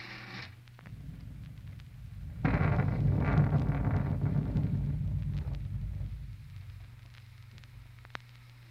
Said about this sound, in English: Huh, kind of looks like a storm coming up, don't it?